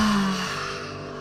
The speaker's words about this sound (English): Inhale. And exhaling, loud sound. Breathing in. And breathing out, big exhale.